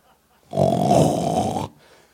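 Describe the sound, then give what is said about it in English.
A voice imitates a single loud, rattling snore, as of Peter sleeping, lasting just over a second, harsh, followed by quiet. “Hallelujah, he was sleeping. I hope he was snoring so loud.”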